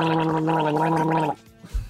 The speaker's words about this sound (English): I'm going to try it, to be honest. You give it a gargle. Go. See, he's trying.